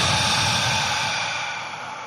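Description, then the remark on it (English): A long, steady breath pushed out through the mouth during a breathing exercise, a soft airy hiss that holds for about two seconds and slowly tapers off. No one speaks. “Let it go out of your mouth.”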